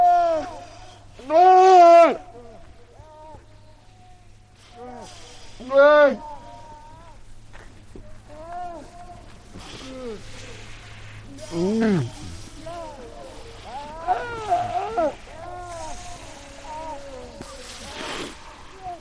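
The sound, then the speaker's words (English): Antarctic mother seals and their pups, living on coastal fixed ice, call back and forth in wavering, bleat-like cries, some loud, others softer, including a sliding downward call, over a steady low hum; recorded by Douglas Quinn for the Wild Sanctuary CD. “Douglas Quinn recorded the calls of these mother seals and their pups for the Wild Sanctuary CD, ….”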